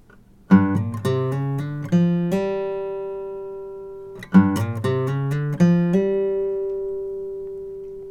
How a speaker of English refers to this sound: And here's just a basic blues sequence using hammer-ons.